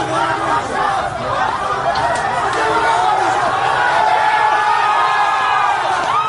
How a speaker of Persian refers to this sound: به محض آن که صدای گلوله را می شنود به همراه سیلی از جمعیت به محل حادثه، یعنی خیابان محمد علی جناح، کوچه صفا، نزدیک پایگاه بسیج 117 عاشورا می رود. تعدادی از نیروهای بسیجی را می بیند که روی بام پایگاه با اسلحه راه می روند. صدای فریاد جمعیت بالا می رود.